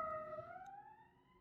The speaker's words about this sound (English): I'm going to let the sirens keep going because this is just fitting for today.